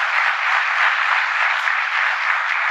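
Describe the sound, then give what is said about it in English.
Sustained audience applause, a dense, steady wash of many hands clapping at an even loudness for a few seconds, with no voices standing out. “I'm going to play it again, and I'm going to stop the clip right after I hear the clapping end.”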